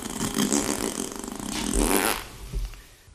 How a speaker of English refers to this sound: fart noise.